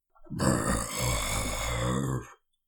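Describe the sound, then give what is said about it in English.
A person imitates a grizzly bear's grunt: one loud, guttural rasp lasting about two seconds, rough and burp-like, with no speech around it. “How many points do I get for trying my best to recreate it after?”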